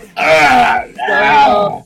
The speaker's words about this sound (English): It's my turn to stretch. Oh my gosh. Stop yawning.